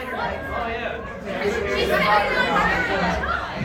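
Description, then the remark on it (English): A steady murmur of crowd chatter, many overlapping voices blending into an indistinct babble that holds at a fairly even level throughout, swelling slightly in the middle. “I do believe the crowd is saying right now.”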